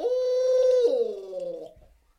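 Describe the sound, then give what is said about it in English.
A person imitates an owl's hoot with a throat roll made by gargling saliva at the back of the throat: one long, steady, throaty tone that shifts slightly lower partway through, then trails off; a single fairly loud call with no talking. “One thing that I try to do when I'm trying to change up sound or sound like two different owls is change the frequency.”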